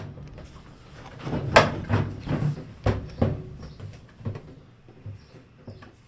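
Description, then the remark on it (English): A washing machine runs with a low, steady rumble, broken by a series of irregular clunks and knocks, louder in the middle and fading toward the end. No one speaks. “Washer.”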